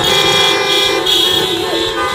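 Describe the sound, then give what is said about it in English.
Many car horns honk at once in a sustained, overlapping blare, loud and steady for the full two seconds, replacing applause at a drive-in rally held by Senator Warren in Madison, Wisconsin, on Saturday. “The Massachusetts senator and former presidential candidate held a drive-in rally in Madison on Saturday, where speeches were given through masks and applause was replaced with honking car horns.”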